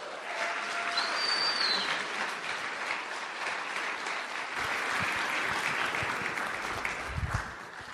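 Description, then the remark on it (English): A crowd applauds steadily, a dense wash of many hands clapping at a fairly even loudness throughout, with a few faint cheers or whistles rising above it early on. “So will you give them a round of applause?”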